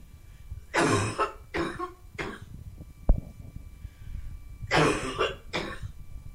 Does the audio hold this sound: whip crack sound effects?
no